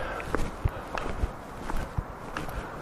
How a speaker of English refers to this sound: Yeah, it's a quiet street. I can see my road trek, Sal, up ahead. You can hear my footsteps, I don't know.